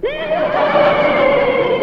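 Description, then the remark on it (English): A single loud, drawn-out horse whinny, holding a high, steady pitch for almost two seconds before cutting off. No talking over it. “Well, the horse liked that one.”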